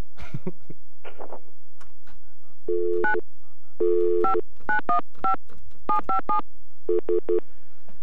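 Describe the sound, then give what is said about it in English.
A telephone number is punched in on a keypad to call Ann Rohmer at City TV: a quick string of about ten crisp two-note touch tones in uneven bursts, preceded by a few soft clicks and rustles, with no one speaking. “Yeah, let's call Ann Rohmer at City TV.”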